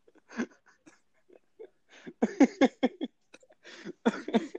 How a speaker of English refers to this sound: I'm gonna go into a coughing fit.